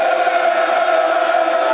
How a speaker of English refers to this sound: Crowd trying to get behind their Lions.